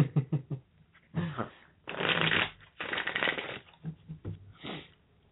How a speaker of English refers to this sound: I just was shuffling the cards, sorry.